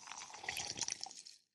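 A big gulp of a drink: a wet, sloshing swallow with bubbly liquid sounds lasting about a second and a half, fairly quiet, with no one talking.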